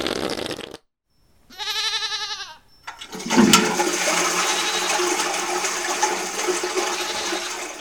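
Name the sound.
toilet flushing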